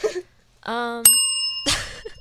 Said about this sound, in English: Sadie grabbed a bell.